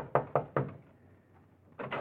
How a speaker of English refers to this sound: And you pray there's still someone in the copy room as you pound on the door.